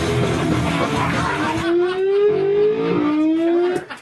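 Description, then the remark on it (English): A loud, rough rush of noise gives way to a steadily rising engine-like whine, like a car revving hard and speeding away, cutting off abruptly near the end. “It totally sounds like a car speeding off the bridge.”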